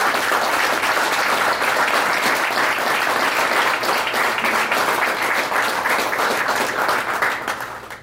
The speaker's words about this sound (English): So can we please everybody give a big round of applause for every single one of them coming here?